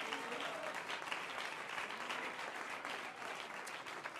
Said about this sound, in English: Would you clap your hands unto the Lord and give him praise? Come on, give him praise.